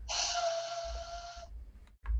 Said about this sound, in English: Why are you just doing a hand whistle? This is cursed.